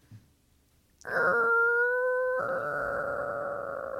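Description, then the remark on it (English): A voice imitates a creaky door: a sustained, whiny tone that rises slightly in pitch, then turns rougher and raspier, holding steady without much change until it ends. “Isn't that a creaky door?”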